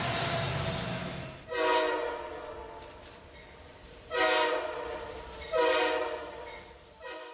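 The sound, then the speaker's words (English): A train horn sounds three loud blasts, the first long and the last two shorter, over the low rumble of a passing train. No one speaks. “Is that Taysom train running through them haunted houses?”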